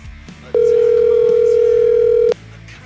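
A single ringback tone on an outgoing phone call: a steady, electronic hum-like ring lasting about two seconds, fairly loud and clear over a faint background, with no one talking.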